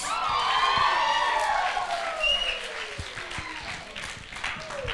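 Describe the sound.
A crowd applauds steadily for a friend while voices cheer and whoop over the clapping. It is loud at first and eases slightly as the dense, noisy applause continues.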